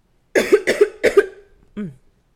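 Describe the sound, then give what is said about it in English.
Three harsh coughs burst out in quick succession, followed by a short voiced catch of breath at the end of the fit. No talking. “Sorry, y'all, I am coughing my life away over here.”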